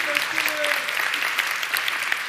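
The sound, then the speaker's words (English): A crowd claps steadily throughout, a dense, sustained round of applause with a brief voice faintly audible near the start. “round of applause.”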